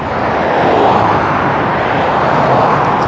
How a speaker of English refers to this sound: Oh, scary. The cars are going fast. There's no speed limit in Mexico. Everyone drives like at 100 miles an hour.